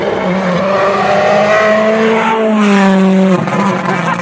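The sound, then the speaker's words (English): A rally car roars past at speed on a super-soft sandy stage at Rally Poland, its engine note rising and then dropping sharply as it sweeps by loud, with gravelly spray and a hint of wheelspin. “We've had next car's coming through now.”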